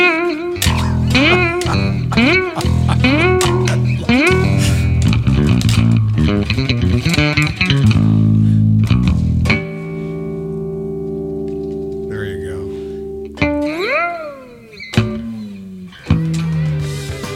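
Loud electric guitar through a distortion device, playing repeated swooping bent-note phrases, then a long ringing sustained chord and a few final wailing bends, with no talking.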